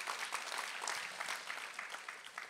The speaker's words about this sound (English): I appreciate that little golf clap. It's like, what is this, the Masters?